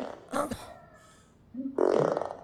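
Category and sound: sound effect, long fart sound effect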